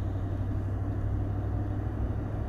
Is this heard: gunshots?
no